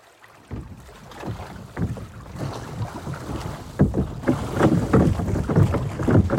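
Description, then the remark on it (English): A boat moves across water on a short boat ride from Badagry to an island called Gaberafu, with steady churning and sloshing that swells into rhythmic surges of splashing, while wind buffets the microphone throughout. No one speaks. “A short boat ride away from Badagry is an island called Gaberafu, or the Point of No Return.”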